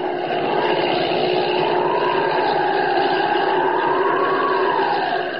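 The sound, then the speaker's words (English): Holbein's airplane drones steadily overhead, its engine hum rising and falling slowly in pitch as it circles, getting ready to land at the Sudbury airport, a continuous loud whirring with no voices. “He's circling, getting ready to land.”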